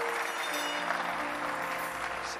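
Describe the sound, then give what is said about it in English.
A crowd claps steadily and densely throughout, a sustained wash of many hands, with faint tonal sounds held underneath. “If you are clapping, error will be corrected in your family.”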